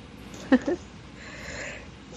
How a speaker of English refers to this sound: Okay, sneeze. That's fine. How dare I go on a walk and get allergies?